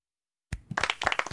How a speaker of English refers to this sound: Clap, clap, clap.